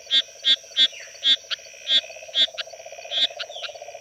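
A bumpy rocket frog calls with about nine short, bright, evenly spaced chirps. A steady low trilling drone runs beneath them throughout, and no one speaks.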